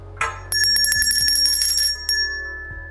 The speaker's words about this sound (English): Ask them to sit down, close their eyes, and listen to the sound of the bell. And ask them to pay attention to that sound, where it's coming from, until they can't hear it anymore.